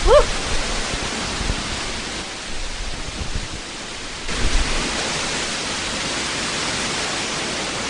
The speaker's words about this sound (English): I don't know if you'll be able to pick up the distant roar in amongst the wind. It sounds like there's a train coming. It's nuts. It seriously is.